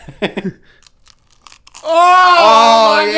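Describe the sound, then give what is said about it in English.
A few quick, crisp crunches of a waffle being bitten and chewed, followed after a short pause by a loud, drawn-out vocal sound. “Darn that waffle sounds amazing.”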